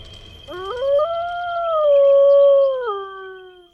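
A single long, mournful howl rises, holds a steady pitch, then drops away, clear with no other sounds around it, coming from a wheat field.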